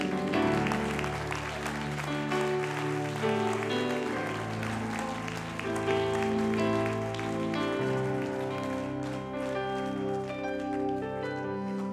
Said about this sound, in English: I want you to clap your hands unto the Lord right now.